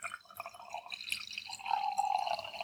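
Wine pours steadily into a glass, a bubbling, gurgling trickle that starts with a few splashes and settles into a rising, ringing fill sound. No one speaks.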